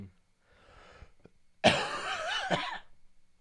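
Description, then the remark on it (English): A breathy inhale followed by a single harsh cough, caught in the hand, with a raspy, wheezy tail lasting about a second. No one speaks. “it's a proper podcast etiquette to turn your head away from the microphone. I did. I caught it in my hand.”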